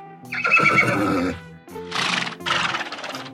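animal, horse neighing

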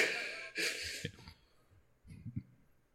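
human body sound, sneeze

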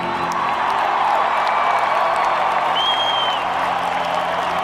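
crowd, crowd cheering and applauding

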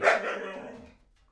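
animal, dog barking

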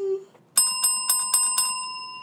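household object, bell ringing

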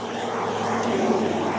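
vehicle, car passing by

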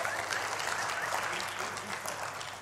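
crowd, round of applause

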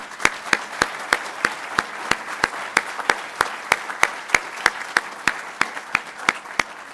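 crowd, applause

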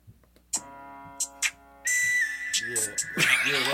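sound effect, whistle melody

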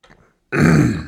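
human body sound, suppressed burp

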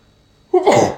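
human body sound, sneeze

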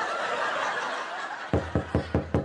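household object, knocking on a door

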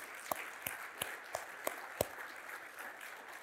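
crowd, audience clapping

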